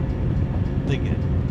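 A train in a video game rolls steadily along railroad tracks toward a crossing as the gates drop, a loud, continuous low rumble, with a brief high-pitched squeal rising midway through.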